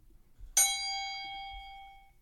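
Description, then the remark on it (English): A single bright bell ding with a sharp strike, its clear metallic tone ringing out and slowly fading over about a second and a half, with no voices. “All right, let's ding the bell here.”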